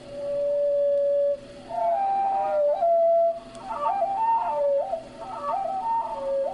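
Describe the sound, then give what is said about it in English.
Hermit thrush song slowed to quarter speed: a long, steady, low whistled note, then a run of gliding, warbling tones that rise and fall in pitch, clear and unaccompanied. “Oh, to be a hermit thrush for a day, to hear as they hear.”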